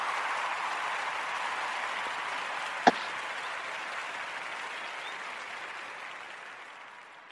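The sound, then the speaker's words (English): A steady round of applause on the Female MCs Radio show for the legends on air, dense clapping that holds for several seconds with one sharp louder clap standing out, then gradually fades as it winds down. “Can we get a round of applause for the legends that are on?”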